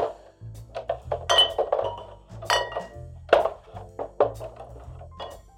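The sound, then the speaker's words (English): Glass bottles of wood alcohol clink and rattle against each other in a crate, a busy irregular series of bright chinks over dull wooden thumps, with no one speaking. “A bunch of bottles. Wood alcohol.”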